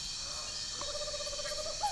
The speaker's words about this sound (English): But before retiring for the night, I walk down to the marshy edge of the lagoon. Well, what do you know? A tropical screech owl singing from a nearby tree. How exciting is that?